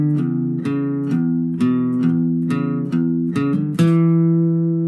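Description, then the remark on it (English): An acoustic guitar plays a short blues riff of about eight ringing low notes in a loose rhythm, the second time round with one more hammer-on from 4 to 5 slurring into the next note, ending on a sustained chord, with no talking. “And then the second time round, we just have one small change, which is one more hammer-on from 4 to 5.”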